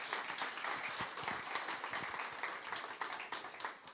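A church audience applauds steadily as the first interviewee is called up, a dense wash of many hands clapping with scattered sharper claps standing out, sustained at an even level throughout with no voices.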